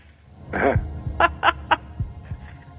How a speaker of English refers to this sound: And now I hear the heartbeats